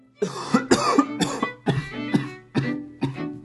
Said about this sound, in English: Got a cough? Sore throat?